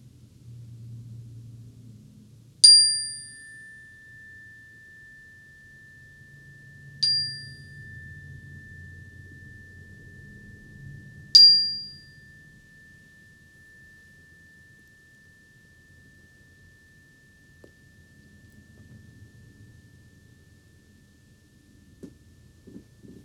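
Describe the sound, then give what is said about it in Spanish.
A meditation bell is struck three times at the start of a meditation practice, several seconds apart, each strike bright and resonant, its pure ringing tone lingering and slowly fading over a low, quiet background rumble. “Esta práctica comenzará con el sonido de la campana como una manera de anclarnos al momento presente.”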